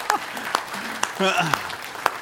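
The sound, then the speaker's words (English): A church audience claps hands for the Lord's provision in a steady, even rhythm, about two sharp claps per second, while a voice briefly speaks or calls out partway through. “So now you can clap on the Lord's provision.”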